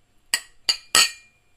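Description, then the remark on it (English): Three bright glass clinks in quick succession, the last one louder and ringing a little longer, as glasses of Hiracha are touched together in a toast. No talking. “We're drinking Hiracha right now, by the way. Yep, we're drinking. Cheers!”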